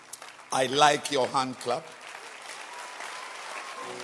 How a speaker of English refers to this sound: I like your hand clap.